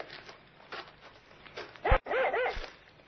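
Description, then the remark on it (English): A dog that has found something ahead barks excitedly, a few sharp, rising yips and barks bunched together near the end after quieter rustling movement. “Here, what's the matter with your dog? Oh, he seems to have found something ahead there. Well, it's not like him to get that excited.”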